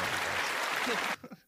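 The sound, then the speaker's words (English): A burst of crowd applause sound effect plays loudly and steadily, then cuts off abruptly all at once, followed by a few brief fragments of a voice. “What happened to the applause? All of a sudden, they all stopped at the same time.”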